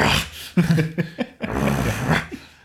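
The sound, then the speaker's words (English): A person makes a rough, guttural growling sound with their voice, several raspy bursts strung together over a few seconds, fairly loud, with no words spoken. “If you growl at her, in doing like bare your teeth.”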